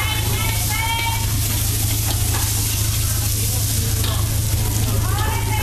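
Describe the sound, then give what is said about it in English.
Flat noodles and yellow noodles stir-frying together with egg and bean sprouts in a hot pan: a dense, steady sizzle with scraping and clattering from the tossing, plus faint voices in the background and a low hum throughout. “Oh, it's mixing the flat noodle and the yellow noodle too.”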